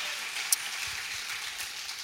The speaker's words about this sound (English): And can we just for a minute honor our pastors today? Tell them that you're thankful. Come on, why don't we just clap our hands a little bit honestly and tell them thank you, that we love them, that we're grateful.